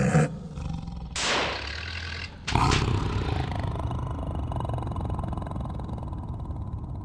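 A tiger roars loudly: a brief opening growl, then a longer roar, then a deep, rumbling roar that stretches on for several seconds with no voices.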